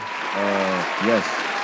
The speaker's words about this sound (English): Man, I am moving. I got my own spot. I'm putting a round of applause right here.